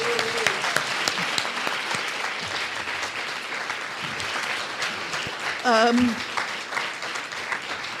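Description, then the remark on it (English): An audience applauds itself steadily for several seconds at the end of an evening community event in St Albans, with dense clapping and a brief whistle or cheer cutting through near the end. “So I think we'll all give ourselves a round of applause.”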